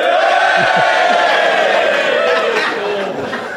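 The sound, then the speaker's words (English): An audience cheers loudly and steadily when asked to cheer, a dense wash of many voices with scattered whoops and yells rising above it, easing off slightly toward the end. “So if you think I acted morally, will you please cheer now?”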